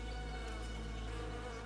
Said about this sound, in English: And in the middle of this place was a large oak tree. And from the top of the tree, there came a loud buzzing noise.